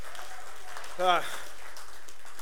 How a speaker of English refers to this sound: We give applause to that because we give in love and all that. We know it goes to God, and God is so praised.